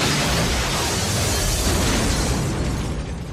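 explosion

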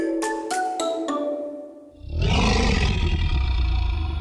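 lion roaring

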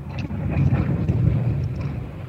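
airplane flying overhead

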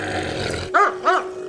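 dog growling and barking

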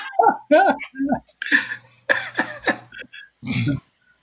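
dogs barking

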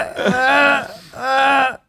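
person yawning

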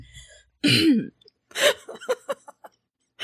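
cough

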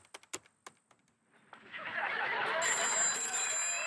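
telephone ringing

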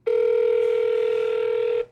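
telephone call ringing out

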